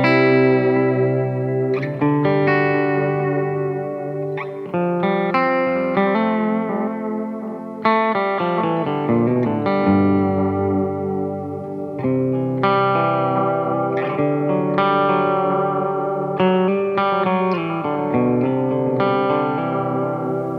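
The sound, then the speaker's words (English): Electric guitar playing sustained chords and melodic lines, with wavering pitch bends from a tremolo arm, washed in delay and reverb. Steady, fairly loud, and alone without any talking. “But there is something about, I think, maybe just the trim arm on these guitars.”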